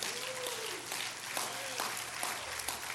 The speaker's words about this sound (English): Can you clap your hands? Hands unto the Lord.